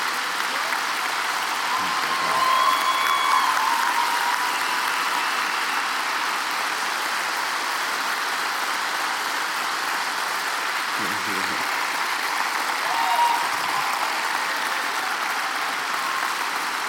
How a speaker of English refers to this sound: Actually, you can cheer now if you want.